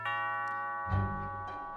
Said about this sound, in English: Just then, the doorbell rang.